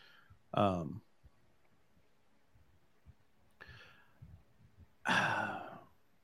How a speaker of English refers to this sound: making fun of me for yawning. Listen, I'm sleep deprived. I've not had much sleep in the last few days, so y'all just gonna have to deal with it.